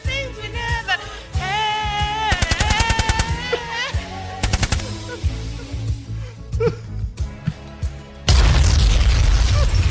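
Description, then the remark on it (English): Loud bursts of rapid automatic gunfire in two short volleys, mixed with booming hits and tonal effects, then a sustained, harsh roar of noise crashes in near the end. “Do we have a train wreck sound anywhere? I think we're hearing it. Or a gunshot.”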